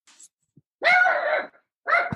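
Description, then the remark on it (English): A male pet dog vocalizes in two loud, tonal bursts: a drawn-out whining groan lasting most of a second, then a brief pause and a second similar cry that cuts off. No one speaks. “The dog did not agree with that statement.”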